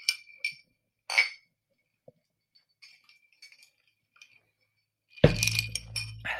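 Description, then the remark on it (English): Glasses of tequila sunrise clink together in a toast: a few bright, ringing taps, then faint tinkles and a louder burst of glassy clinking with a low thump near the end. No one speaks. “So cheers.”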